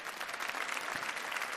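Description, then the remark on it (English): Steady applause from a sizable crowd as about eight volunteers come up onto a stage for a skit, many hands clapping densely and continuously at an even level throughout the brief stretch, with no voices standing out. “Give these guys a round of applause as they come up, all right?”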